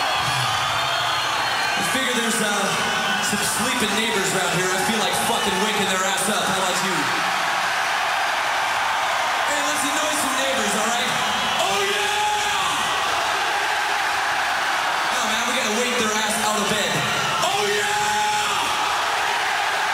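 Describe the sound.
A concert crowd loudly shouts and yells along with a singer, a dense roar of many voices rising in repeated bursts of bellowed lines over about twenty seconds.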